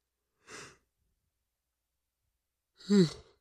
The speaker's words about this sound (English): I'm yawning.